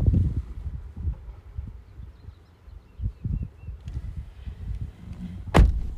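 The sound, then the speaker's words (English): Wind rushes through an open window on a gloomy, chilly day with barely any sun, in low, uneven buffeting gusts that rumble and swell, with a single sharp thump near the end. No one speaks. “I'm gonna raise the window down so maybe you can hear the how windy it is.”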